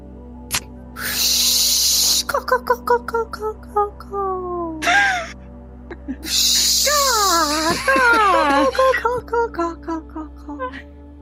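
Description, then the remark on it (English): A person imitates birds with a string of warbling, sliding whistles and chirps broken by loud breathy hissing bursts, as part of a mock ad for a massage parlor called Relax Rooster. The calls come in quick uneven runs for about ten seconds. “Those are the sounds of birds.”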